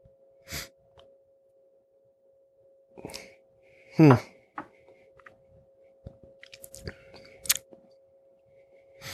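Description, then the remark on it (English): Quiet sips of a menthol-flavored drink: a few short wet slurps and a swallow with a breathy exhale, spaced out over several seconds above a faint steady hum. “And then the last sip is just like a little bit of... it's definitely menthol.”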